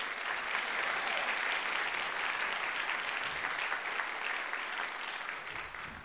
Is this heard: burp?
no